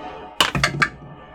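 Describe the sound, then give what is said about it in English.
Dice, rolled for a strength save, tumble onto a table in a quick burst of three or four sharp clattering knocks, the first the loudest, then a brief faint rattle before quiet returns. No one speaks. “Where dice? Dice have. Where left. Dice go? Dice have departed.”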